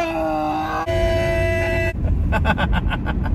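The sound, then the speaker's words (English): A car drives onto a highway, its loud engine droning with a steady tonal whine that gives way to a quick, rhythmic pulsing rumble. No one speaks. “As we are driving, I'm getting onto the highway.”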